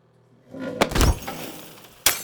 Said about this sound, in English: In the other room, a moonshot woman tries to stand and stumbles over one of the low tables, sending the large smoking jar full of water crashing to the ground. The shattering sound causes Cass and Lobo to turn toward the curtain.